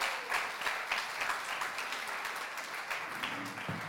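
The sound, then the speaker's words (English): A crowd applauds steadily for about four seconds, many hands clapping in a dense, even patter at moderate loudness with no voices over it, as a woman comes up to share her story in an interview. “Why don't you give her a round of applause as she comes to share.”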